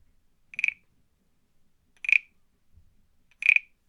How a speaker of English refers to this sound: A frog? It is, a little frog.